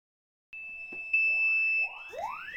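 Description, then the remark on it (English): A kitchen smoke detector's fire alarm blares a loud, piercing, unbroken high tone, and repeated rising whooping sweeps join in partway through. No one speaks. “sets off the fire alarm.”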